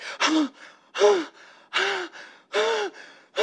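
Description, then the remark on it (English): A voice imitates panicked gasping, sharp rapid breaths at a steady quick rhythm, each a harsh inhale followed by a shorter exhale, fairly loud with no words spoken. “Through almost hypochondriac breathing.”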